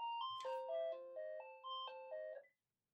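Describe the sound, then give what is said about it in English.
A phone rings with a melodic electronic ringtone: a quick run of bright, pure tones stepping up and down in pitch, steady and fairly loud with no talking, then cutting off abruptly. “Sorry, hang on. I've got a phone.”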